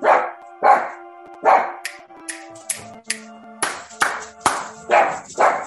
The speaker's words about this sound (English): I don't know what she's barking at. It's not windy at the house. No one's here.